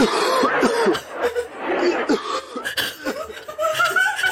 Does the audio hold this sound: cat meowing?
no